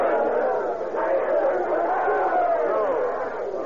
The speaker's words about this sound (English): What's all that shouting about?